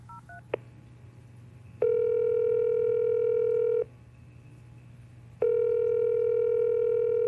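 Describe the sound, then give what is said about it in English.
A few quick keypad beeps as a number is dialed on a mobile phone, a click, then a steady ringing tone sounds twice in long two-second bursts with a pause between, over a low constant hum. “And we see the figure we've been following dump two heavy luggage bags he's been carrying at his feet, reach into his trench coat, pull out his phone, and make another call.”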